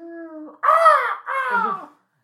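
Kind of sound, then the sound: vocal imitation, voice imitating crows cawing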